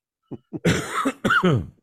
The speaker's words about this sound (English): Sorry about the cough, people.